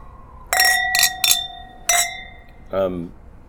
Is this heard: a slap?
no